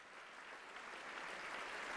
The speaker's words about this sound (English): Listen to that applause. I've heard louder. It is the quality to which I refer.